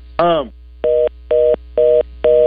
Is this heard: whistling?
no